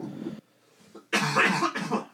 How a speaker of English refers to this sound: hold on, I got a cough.